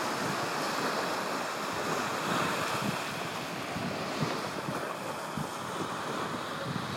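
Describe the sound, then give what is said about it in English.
Ocean waves wash and break against the shore in a steady, rushing roar, with gusts of wind mixed in and no voices, filling the whole stretch at an even level. “I will never come back to the surface, you know, because it's so beautiful deep down, and the waves are calling me, and I'm not sure for how long I can ignore their calls.”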